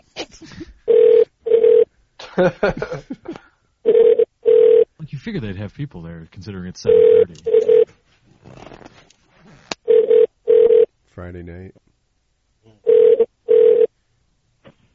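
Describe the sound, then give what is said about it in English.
A telephone ringback tone repeats in steady double rings roughly every three seconds, heard through the line while calling the electronics department of a Walmart store, as a person talks in the gaps between rings. “By the time they pick up, the PS4 will be out.”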